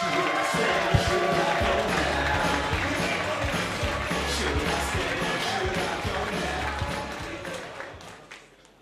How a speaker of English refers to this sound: Keep that applause going for the fourth act.